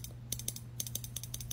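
Scissors snip through the sides of a person's hair in a quick, uneven run of about eight crisp metallic clicks, fairly quiet, over a low steady hum with no one speaking.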